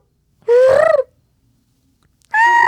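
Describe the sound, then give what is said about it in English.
A person's voice imitates a bird call in two loud, harmonic squawks, the first rising and falling and the second cut off at the end, separated by a second of near silence. “Yeah, like now you really are just doing bird calls.”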